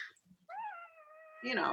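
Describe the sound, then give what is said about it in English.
A cat named Oscar lets out one long, drawn-out meow, holding a steady tone before it rises into a louder, strained cry at the end. “I love how your cat is like, bad idea”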